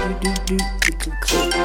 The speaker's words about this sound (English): Typewriter noises.